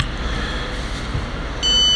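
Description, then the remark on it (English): A contactless payment terminal gives one bright, steady electronic beep near the end as a phone is tapped to pay, loud, over a low hum of background noise with no talking. “I feel like if you tap, that means I can pay with my phone.”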